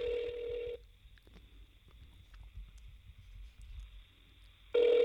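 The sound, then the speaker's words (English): An outgoing phone call ringing: a steady electronic ringback tone sounds briefly, pauses for several seconds of low background noise, then starts ringing again, clear. “Let's see what Cam's up to. Oh God. He's not gonna answer the phone.”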